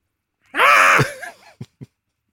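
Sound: scream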